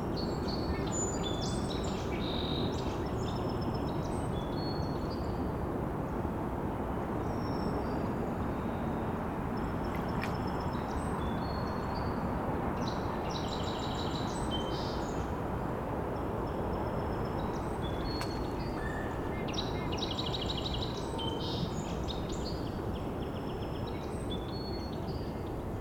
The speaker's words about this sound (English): Hearing a faint ticking call flying over. Wondering if maybe a crossbill from the type of call I was hearing. Very faint though. It's late March though. It's still migrating.